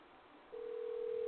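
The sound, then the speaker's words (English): A steady telephone ringing tone on a radio call to the Guelph Tourism Board in Guelph, Canada, comes through a narrow phone line, starting about halfway in and holding evenly to the end after a faint hiss. “It's ringing.”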